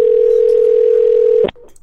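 A steady, mid-pitched telephone ringing tone hums with a faint regular pulse for about a second and a half as a phone call is placed, then cuts off abruptly with a click as the call goes straight to voicemail, leaving only quiet line noise.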